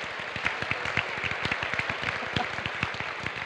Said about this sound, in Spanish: Let's give a clap offering Amen. To the Lord. Vamos a darle un aplauso al Señor.